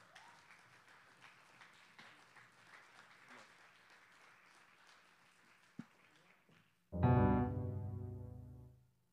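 A standing church audience at a one-year anniversary celebration applauds to welcome the preacher in a steady, dense wash of clapping for several seconds, then a loud, sustained musical chord with rich harmonics abruptly takes over and fades slightly.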